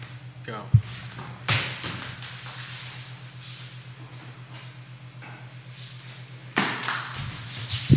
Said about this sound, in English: I almost knocked the love sign down behind me. It was close.